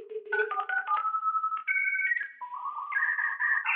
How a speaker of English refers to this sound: Apple Loops, because I use Logic. I have access to all Apple's loops. There's a really excellent computer noise that is just like a weird ambient dial tone and then modem noises.